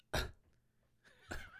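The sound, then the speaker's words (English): Someone clears their throat twice, two short rasping bursts about a second apart, the second trailing into a brief voiced hum. “Let me clear my throat real quick.”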